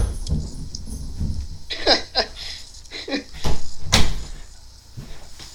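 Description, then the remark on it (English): A dog toy tossed down a staircase, heard as a short run of hollow thumps and knocks spaced unevenly over a few seconds, with a quiet room hum underneath. “I just threw his toy down the stairs, so hopefully...”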